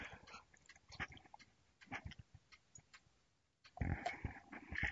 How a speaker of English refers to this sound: Let me get another sip here.